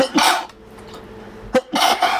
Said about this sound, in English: In my attempt not to cough, I sneezed.